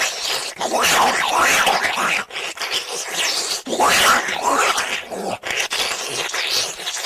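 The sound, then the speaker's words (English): A woman swallows a bun dipped in water: loud, wet, squelching gulps and smacking sounds in several long bursts with brief pauses between them, and no talking. “she gets the bun, dips it in water, that goes down next. Like a snake eating an egg.”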